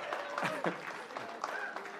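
An audience claps in a steady round of applause, a dense wash of overlapping hand claps at moderate volume, with a few voices and whoops mixed in.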